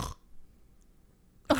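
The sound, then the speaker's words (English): A voice imitates a father's sleep apnea snore and gasp: a short, harsh throaty snort, over a second of near silence, then a sudden loud, raspy gasping burst. “My mom has been trying to force my dad to get a sleep apnea test, but he goes, nah, it's just snoring.”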